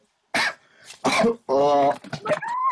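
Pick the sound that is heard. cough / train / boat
cough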